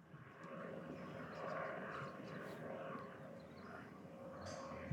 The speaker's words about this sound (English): Plane pause for plane station identification on the Everything Reviewed Network.